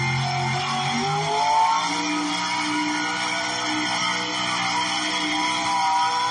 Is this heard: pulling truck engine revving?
yes